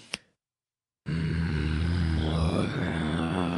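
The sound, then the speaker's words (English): A person lets out a long, loud, raspy growl with a low, rumbling pitch, sounding zombie-like, after a brief sharp noise and a moment of silence. “It sounded like a zombie.”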